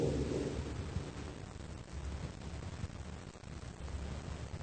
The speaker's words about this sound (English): As long as the storm keeps up, I guess we're lucky to find a dry place to take shelter in.